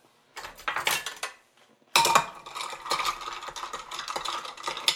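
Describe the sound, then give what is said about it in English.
Ice cubes clink and rattle against glass as a cocktail is stirred with ice in a big cocktail glass, a brief burst followed by a pause and then a steadier run of bright, jangling clatter with no talking. “And then I'm going to stir it in a big cocktail glass, but if you're making it for yourself, just stir it with ice in your own glass.”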